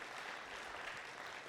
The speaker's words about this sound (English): So another round of applause for these guys. Thank you.